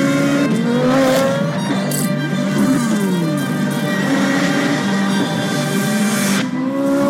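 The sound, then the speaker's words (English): A Corvette Z06's naturally aspirated V8 engine roars loudly, its pitch rising and falling as it revs, with tires squealing over the sustained engine noise. No one speaks. “the smoking hot Corvette Z06. Fundamentally a race car that you can drive on the road.”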